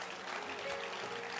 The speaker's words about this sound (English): And I want to say a big thank you to the organizers. God bless them. Clap your hands for the organizers.